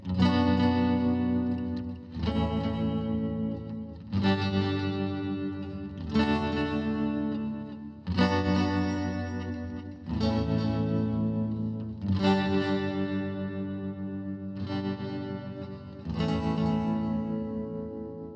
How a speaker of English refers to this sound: Then I thought I'd add some clean electric using the vintage sound of the amp and its tremolo knob.